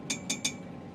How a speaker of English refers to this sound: What's that noise? Air bubbles in the radiator pipes. It's pressurized. Sounds like Morse code.